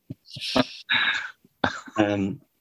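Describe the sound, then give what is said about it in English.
A man coughs twice during a medical examination, harsh, the second cough rougher and more drawn out. Brief throaty breaths come before each one, with no talking. “they're just very unsure about his testes, which is why there's a lot of coughing.”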